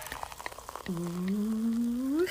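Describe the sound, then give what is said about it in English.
Crackling fizz gives way to champagne being poured into a glass, its tone steadily rising as the glass fills and bubbles, as a toast to celebrate 2019. No voices are heard. “pouring some bubbly.”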